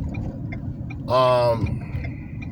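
A car passes by, its engine swelling into a loud, brief whine that drops in pitch as it goes, over a constant low rumble of background traffic.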